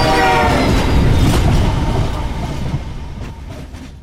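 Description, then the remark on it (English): A train horn blares over the heavy roar and rumble of an oncoming train fitted with a cattle catcher, on railroad tracks. Loud at first, the horn soon cuts out and the rumbling rail noise gradually fades. “The oncoming train had a cattle catcher.”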